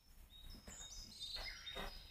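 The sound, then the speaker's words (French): Soft, high-pitched birdsong: several thin chirps and whistled notes overlapping over a faint steady background hiss, with no one talking. “Tiens, on va faire des oiseaux un peu.”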